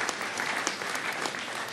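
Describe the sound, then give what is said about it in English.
A Lutheran church audience claps together in steady, sustained applause, a dense wash of many hands with a few sharper claps standing out, continuous and fairly even in loudness with no voices. “Yeah, anytime you want to clap, that's fine.”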